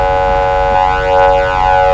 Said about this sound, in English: Stop honking, please. It's annoying.